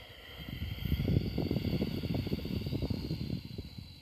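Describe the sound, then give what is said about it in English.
A long, steady ujjayi exhale, made by constricting the muscles, during a yoga exercise with the arms swept overhead; a throaty, hissing breath like sea wind that lasts several seconds at an even, fairly soft level before tapering off. “Exhale and try that sea wind sound.”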